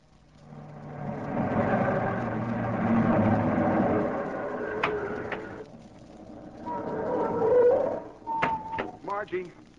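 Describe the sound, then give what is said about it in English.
A car engine revs and rumbles as a woman drives off in Simon's car, fading off before a second swell of motor noise and a few brief high tones near the end. “Abel, she's driving off in Simon's car.”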